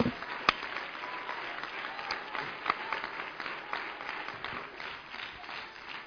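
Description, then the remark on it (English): An audience claps their hands to thank the Lord for the power of the Holy Ghost, a steady, dense wash of applause, many overlapping claps with a few sharper ones standing out, holding an even loudness throughout with no talking. “Would you clap your hands and thank the Lord for the power of the Holy Ghost?”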